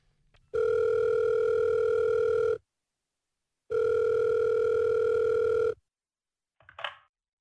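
A telephone ringing tone heard down the line as a call is put through to a resident's room at St Lucia's aged care facility in Haberfield: two long, steady electronic buzzes separated by a short pause, followed by a brief click as the call is picked up. No one speaks.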